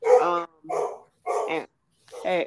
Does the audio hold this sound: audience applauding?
no